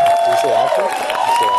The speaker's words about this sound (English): Oh, come on. Where's the applause? There it is. Thank you.